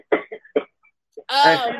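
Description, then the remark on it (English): A woman gives three short, sharp coughs in quick succession, fairly loud, followed by a brief voiced, throaty vocal sound. “She coughing now because she understands that I mean it.”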